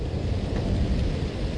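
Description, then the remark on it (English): Steady rain hisses without a break at night in a big city while deep, rolling thunder rumbles low underneath, filling the whole short stretch at a constant moderate loudness, with no voices. “It's nighttime in the big city. Rain has fallen.”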